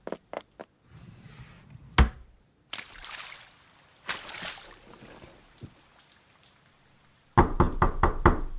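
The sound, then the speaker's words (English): Loud, sharp knocks on a locked door: a few quick raps at the start, a couple more in the middle, then a rapid, heavy burst of pounding at the end, with muffled movement and water-like noise between. “Open this door!”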